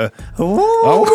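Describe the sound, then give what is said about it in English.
A person imitates a wolf howl: the voice rises sharply after a brief breath, then holds a loud, steady, drawn-out tone. “The …'s doing wolf.”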